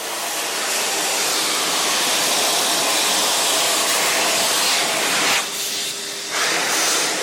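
A loud, steady roar of cool, strong forced air from an Exelon high-speed electric hand dryer drying hands runs almost continuously, briefly shifting in tone near the end as the airflow is interrupted.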